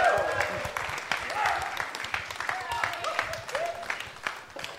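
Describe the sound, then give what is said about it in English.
An audience applauds with dense, steady clapping that lasts the whole stretch, loud and even, with a few raised voices and whoops rising over the applause. “That's why he wants a big round of applause.”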